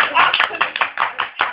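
A brief round of applause from a small group close by, rapid overlapping claps forming a steady patter that lasts just over a second.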